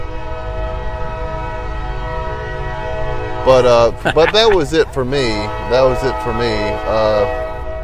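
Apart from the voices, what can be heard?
passing train with horn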